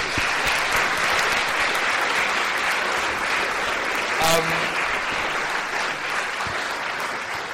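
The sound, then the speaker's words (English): A crowd claps steadily for several seconds at the close of an LSE talk. It is a dense, even wash of applause that holds at a fairly constant level throughout, with a brief faint voice cutting through partway. “No, round of applause, please.”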